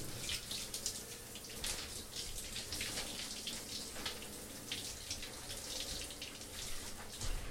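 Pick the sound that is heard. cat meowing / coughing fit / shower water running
shower water running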